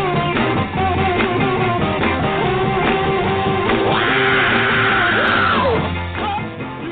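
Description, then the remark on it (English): A man's long, strained scream rises over loud, dense music near a song's end, sustained for about two seconds before breaking off as the music carries on. “were just screaming before the show started, just like that guy at the end of that song.”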